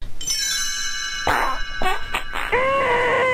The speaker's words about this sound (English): Wait, I got to get my chimes in.